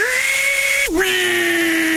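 A table saw whines loudly at a steady pitch, then bogs down briefly as the blade bites into wood, and keeps running at a slightly lower, strained tone.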